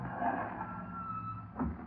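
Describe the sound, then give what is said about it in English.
A car engine rumbles low and steady, slowing as the car pulls up and stops outside a lawyer's building, with a brief soft thump near the end. No one speaks. “I'm stopping here, Margot.”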